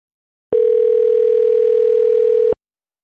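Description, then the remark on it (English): One steady electronic ringing tone from an outgoing phone call calling back a number, lasting about two seconds, loud and clean with an abrupt start and stop, with no voices around it. “Pick up the phone. Pick up. They're not going to pick up.”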